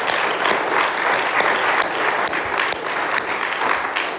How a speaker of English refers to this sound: Just give Blaine another round of applause.